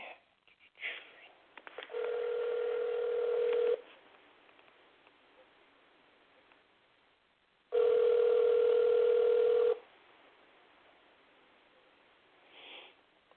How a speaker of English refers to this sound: Maybe I can see if he is having problems calling in, because I don't know. I'm just going to call him on my phone and see what happens. Let me see.